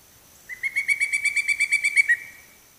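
A pileated woodpecker calls a loud, ringing series of about a dozen quick, evenly spaced notes, lasting under two seconds, clear, with no voices.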